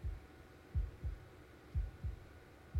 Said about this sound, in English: And I heard her heartbeat instead of my own.